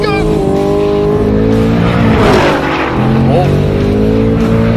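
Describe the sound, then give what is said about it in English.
Loud engines of a truck and a Mustang roar and climb in pitch as they drag race in a roll race, with a brief burst of tire noise midway and excited voices underneath. “Oh, that truck is fast! Damn it! And the Mustang is the fastest!”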